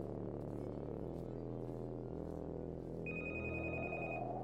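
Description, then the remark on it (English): A hotel telephone at Wilton's Hotel rings steadily at 5 p.m. over a dense, humming background, with a bright sustained tone joining near the end. No one speaks. “the 21-year-old receptionist, picked up the phone.”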